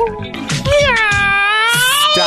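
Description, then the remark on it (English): A person does a long, drawn-out imitation of a cat's meow, a wavering nasal wail held for about two seconds, loud, with a few small thumps underneath. “You meowed?”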